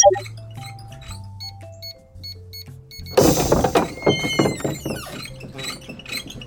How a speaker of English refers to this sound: I really need to oil my wheels. These things are getting super squeaky.